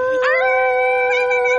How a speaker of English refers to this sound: That sounds like a little, like, yip-yappy dog.